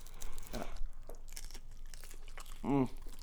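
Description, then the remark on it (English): Crunchy nachos being bitten, a few crisp, irregular crunches, followed near the end by a short voiced murmur. “Is she crunchy? I don't know. Let's see.”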